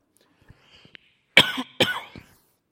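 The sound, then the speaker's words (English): Two sharp, loud coughs, one right after the other, preceded by a few faint small clicks and breaths; otherwise quiet. “If you see I'm going to cough, do your best to turn me off.”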